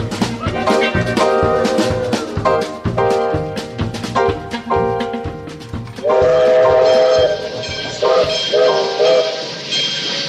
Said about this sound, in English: Say goodbyes to this here train, Banjo, and I'll say hellos to where we are, which is Chocolate Holler if its welcome sign ain't a liar.